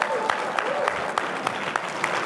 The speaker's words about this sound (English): So, yeah. Let's give a round of applause for Shucks.